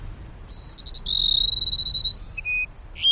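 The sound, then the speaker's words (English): A male sparrow sings a courtship song in the Sonoran Desert after the late summer rains: thin, high whistles and quick buzzy trills, with a long pulsing note followed by several clear, piercing whistles over a faint low background rumble. “Now the males sing their plaintive phrases almost nonstop.”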